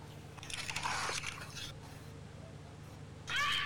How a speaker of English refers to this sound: There's a Fisher cat in my woods, so if you've never heard one, this is what it sounds like.